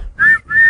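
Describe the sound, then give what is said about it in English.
Two quick, shrill, loud blasts of a whistle in close succession, blown as the jingle for the "Blow the Whistle" show segment, with a brief gap between them and no voices. “Let's go to Blow the Whistle.”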